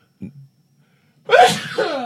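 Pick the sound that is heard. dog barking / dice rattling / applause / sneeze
sneeze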